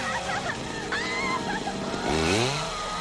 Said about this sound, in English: Now, if Leatherface just... He can just throw his chainsaw in the water. It'll be fine. Yeah, it'll keep running.